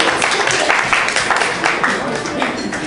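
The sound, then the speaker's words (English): A crowd applauds steadily throughout, a dense wash of many hands clapping at once, fairly loud, with faint voices mixed into the noise. An audience at a comedy show in Seattle. “Yeah, clap for the Bubbles, guys.”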